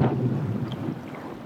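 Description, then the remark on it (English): A soundscape from Alaska's Glacier Bay National Park, mixing recordings from microphones set above and below the water: a steady, deep rumbling wash, with a couple of faint, brief high-pitched chirps floating over it. No one speaks. “We leave you this week in and under Alaska's Glacier Bay National Park.”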